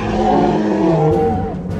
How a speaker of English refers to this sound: The larger male took a step back with a slight bow, but then roared savagely and lunged at Benny.